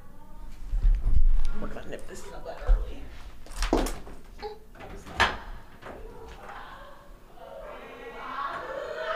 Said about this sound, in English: Oh, they just had to close the door?